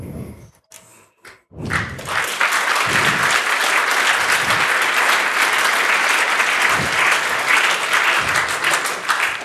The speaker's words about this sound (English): I actually expected laughter rather than applause there because... I blame our test audience.